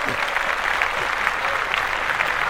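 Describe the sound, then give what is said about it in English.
A steady burst of applause from a group, many hands clapping in a dense, continuous wash at moderate loudness for a few seconds with no voices rising above it. “All right, we can clap that.”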